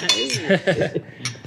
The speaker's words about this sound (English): Clink, clink.